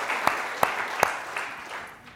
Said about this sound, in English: So veterans, come on, give them a good clap offering. They're here. They're a blessing.